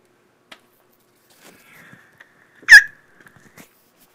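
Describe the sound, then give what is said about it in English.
A single sharp sneeze bursts out, loud, amid an otherwise quiet background with a few faint clicks and rustles before and after. “Got a little bit of sneezing going on.”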